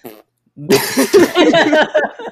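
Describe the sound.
A voice imitates a fart with a loud, buzzy, sputtering mouth raspberry that lasts over a second and wobbles in pitch, following a short vocal sound and a brief silence.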